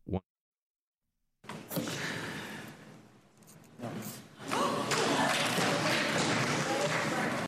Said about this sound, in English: Those were gasps from the moment that Senator John McCain decided to resurrect Obamacare.